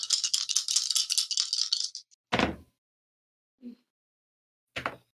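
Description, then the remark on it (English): Real dice rattle in a hand for about two seconds with a bright, clicky shaking, then a sharp clatter as they're tossed for a tabletop role-playing game roll, a soft knock, and another brief clatter. No one talks. “Don't mind if I use real dice, right?”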